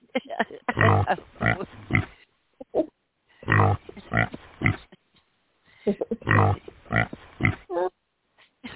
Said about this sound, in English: How many oinks do I get?